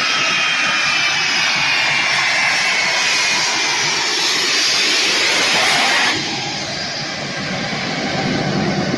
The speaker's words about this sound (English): There's one, and here's another. Look at this. Hundreds, if not 1,000 people running with this Air Force plane as it's trying to take off, and they're gonna get on there.